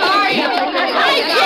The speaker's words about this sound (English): When they open those doors out there, there's a mad scramble for the ticket booth. Usher says it's a real stampede.